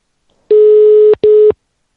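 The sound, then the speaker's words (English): A telephone ringing tone on a Skype call: a steady, buzzy mid-pitched beep lasting over half a second, a brief gap, then a shorter second beep of the same pitch, with no voices. “Is this what the ringing sounds like in Denmark, maybe?”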